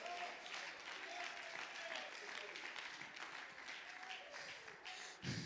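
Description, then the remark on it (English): An audience claps hands in praise, a dense, steady burst of applause lasting several seconds, with faint voices and shouts rising through the clapping. “Give them a hand clap of praise if you're tired of the enemy messing with your stuff.”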